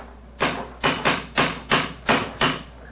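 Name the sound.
cane knocking on stone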